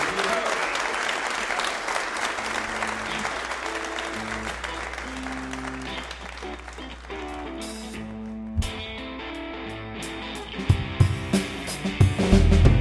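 A crowd applauds steadily for a band at a Red Barn Radio show in Lexington, a dense wash of clapping and cheers that holds its level throughout, with sustained musical tones underneath and a few sharper thumps near the end.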